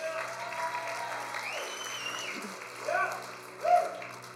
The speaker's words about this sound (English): Give the Holy Spirit a round of applause.